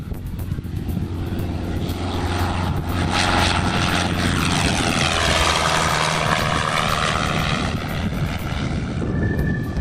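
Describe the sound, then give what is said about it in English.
A small Cessna propeller airplane, Cessna 768, departs runway 9 at Valkyrie, its engine roaring steadily at takeoff power, a constant low droning buzz with harmonic whine rising and sweeping in pitch as it climbs away, no voices present. “Valkyrie traffic, Cessna 768, departing runway 9, Valkyrie.”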